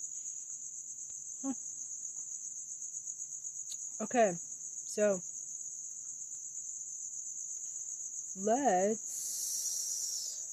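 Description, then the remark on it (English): A steady, high-pitched cricket trill runs continuously throughout, with a few brief spoken words and short vocal sounds breaking in near the start and toward the end. “So, that was a little ASMR of crickets, real crickets.”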